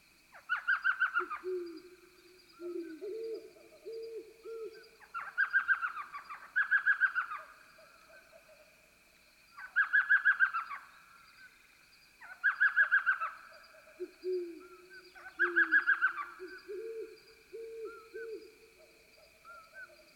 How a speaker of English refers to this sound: recording from Organ Pipe features a pleasing combination of sounds, including the yelps of an elf owl, the toots of a western screech owl, and the deep resonant hoots of a pair of great horned owls in the distance, all set against a cricket chorus.